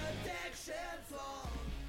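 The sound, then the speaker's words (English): Faint screaming from people far away carries through for a couple of seconds, wavering high-pitched cries overlapping one another with no other voices or talking. “Sorry, they're screaming.”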